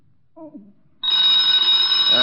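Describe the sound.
A telephone bell rings loudly and steadily from about halfway through, a continuous metallic jangle that follows a brief murmur of voice at the start.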